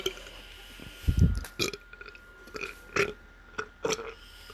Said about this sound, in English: I am so good at belches and so bad at belches.